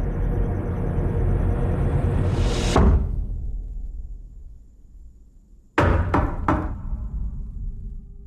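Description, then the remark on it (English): From the trailer for Shyamalan's film Knock at the Cabin: a deep, swelling rumble ends in a heavy thud and fades to near quiet, then three loud, sharp knocks on a cabin door land in quick succession, with no one speaking. “Knock at the cabin simply means they can put a lot of scary knocks all through the trailer.”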